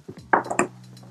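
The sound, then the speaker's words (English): Keys jingle in a short metallic burst, a few bright clinks and rattles lasting under half a second, followed by a steady low hum with no talking. “You heard that shit. I got my keys.”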